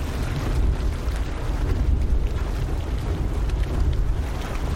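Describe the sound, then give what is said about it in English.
Dragon's Mouth, a turbulent hot spring about 16 feet deep in Yellowstone National Park with 170°F water, churns and gurgles in a steady, heavy rumble. Rising gases cause pressure explosions in its cavern, giving deep booming surges and bursts of bubbling water over a constant low roar. No voices. “Yellowstone National Park's Dragon's Mouth is a turbulent hot spring about 16 feet deep with water temperatures of 170 degrees Fahrenheit.”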